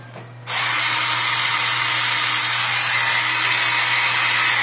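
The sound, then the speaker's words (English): An electric pencil sharpener kicks in after a brief pause and runs with a steady, loud, high-pitched grinding whir over a low motor hum, unbroken for several seconds, stripping off only one side of the pencil. “No, it's just stripping off one side of the pencil.”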